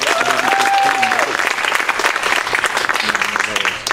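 Loud, dense audience applause fills about four seconds without letting up, with a sustained whistle or cheer near the start and a few indistinct voices mixed into the clapping.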